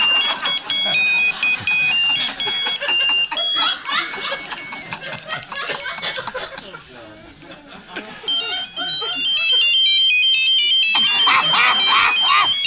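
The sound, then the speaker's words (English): A loud cell phone ringtone plays, a bright electronic melody of quick beeping notes that repeats, dips briefly in the middle, then starts up again and rings on. “I'll never forget the first time that we kissed and somebody's cell phone went off in the elevator.”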